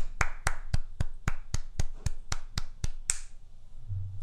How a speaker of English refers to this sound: I'm clapping for him.